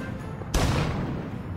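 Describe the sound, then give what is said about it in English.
A cannon booms once, a sudden loud blast that rolls off into a long, rumbling decay over low background noise, with no voices; cannons fired while a band played on the boat carrying Colonel Meacham and his giant cheese from Port Ontario. “When the cheese and Colonel Meacham were on the boat, allegedly he had a band play with cannons firing.”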